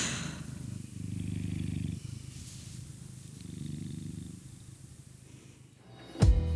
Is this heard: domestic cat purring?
yes